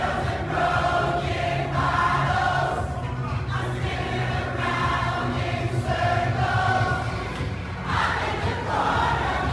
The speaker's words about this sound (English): I mean, it was hundreds of people. Yep. Just waiting for the subway, singing